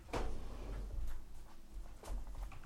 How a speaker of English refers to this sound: let me open my drawer here.